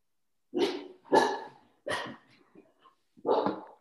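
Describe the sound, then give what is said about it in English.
A female dog barks four times in a loose, uneven rhythm, each bark sharp and fairly loud, with short quiet gaps between them and no one speaking. “I think your dog may have an answer.”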